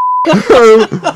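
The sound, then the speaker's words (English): A single steady electronic beep sounds for a quarter second, a join tone on a WebEx conference call, then a voice cuts in with a short laugh-like sound. “There were like 1,000 beeps onto that call, and I was like, okay, we all clearly forwarded this.”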